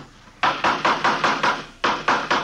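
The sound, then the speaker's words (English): A hammer taps out a steady run of sharp, fairly loud strikes, about six in quick succession, then after a brief pause three more at the same brisk rhythm, as someone builds a plywood coaster. No one speaks. “Say, would you hand me that hammer there, officer?”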